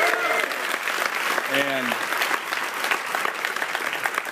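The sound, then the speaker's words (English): An audience claps steadily for about four seconds for the Egginator, an egg-throwing fundraiser at Oklahoma State homecoming that raised $4,000, a dense, even wash of applause at a constant level, with a couple of brief voice sounds rising above it. “Let's have a round of applause for it.”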